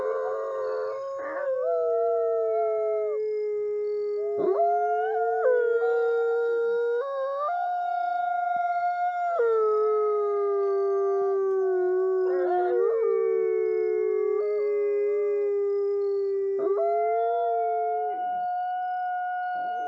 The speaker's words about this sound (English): hearing wolves howl is pretty amazing, and bear up close. Then are they really howling? Is that what it sounds like? It sounds like a theremin, the Russian instrument.